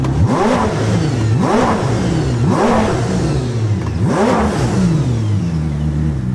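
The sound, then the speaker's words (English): A Koenigsegg supercar engine revs hard and fast from idle to 8,500 RPM several times in quick succession, each blip snapping its pitch sharply upward within a fraction of a second before dropping back toward idle, loud with no talking. “it's going to go from, idle to that 8,500 RPM that fast”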